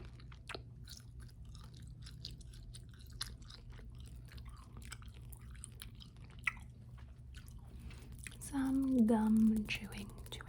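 Soft chewing of gum, with steady wet clicks and smacks repeating over a low hum. A brief murmured vocal sound rises near the end.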